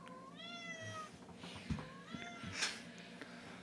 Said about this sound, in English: Cat. Yes, you. Go.